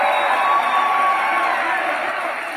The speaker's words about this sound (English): Drill, baby, drill. And then a huge applause.